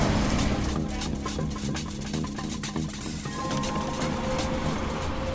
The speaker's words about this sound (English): What's that? Don't be afraid, it's just a tram to the right.